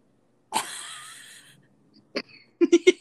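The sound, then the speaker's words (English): A person imitates a cough from a constantly itchy throat that they are trying to hold in: a strained, wheezy squeak lasting about a second, a short pause, then a quick burst of four or five sharp coughs. “Okay, so, you know, like, that one, like, cough you get, usually in the most inconvenient situations. Where there is a constant itch in your throat, and you're trying to hold it in, but then your face gets all red, and you're just like...”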